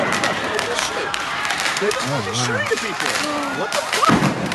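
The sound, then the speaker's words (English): Roman candle fireworks fire a handful of sharp pops at uneven intervals over a dense, noisy outdoor wash, with voices shouting and calling out through the middle of the scene, recorded from a balcony. “But what kind of firecracker is that? That's a Roman candle.”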